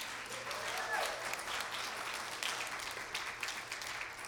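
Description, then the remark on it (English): A church audience claps together for new members who have just joined, a dense, steady burst of applause that holds at an even, moderate level for several seconds, with many hands blending into a continuous crackling wash. “Let's clap.”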